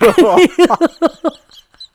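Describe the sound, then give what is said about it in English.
A person imitates a hawk's screech, the cry heard in a TV show right before the character Hawk appears: one long, harsh, strained cry followed by a run of shorter, quickly fading calls, with no other sounds around it. “And they do something with Hawk this season, where anytime right before you see him, you hear the, rah!”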